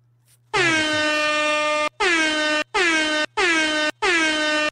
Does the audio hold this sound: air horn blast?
yes